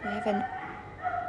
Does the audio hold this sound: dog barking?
yes